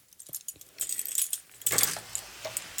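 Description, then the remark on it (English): A door is opened and shut amid a scatter of bright metallic jingles, like keys rattling, with a fuller rustling thud partway through; moderately loud, and no one speaks. “Oh, I'll say that again in case you didn't hear that because of the door.”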